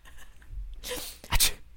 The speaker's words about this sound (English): From the casket. A sneeze.